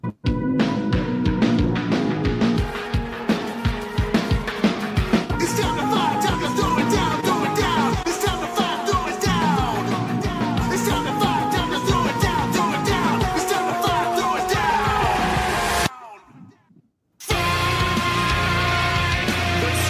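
A loud, dense band song with vocals over pounding drums and distorted instruments, playing continuously until a brief sudden dropout near the end before the music returns.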